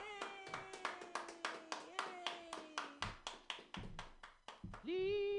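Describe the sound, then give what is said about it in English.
Steady, rhythmic hand clapping by a comedy show audience at Mutiny welcoming the first comic of the night, roughly four claps per second for about five seconds, fairly loud, with a drawn-out cheering voice over it and a sustained tone rising at the end. “Clap your hands together for”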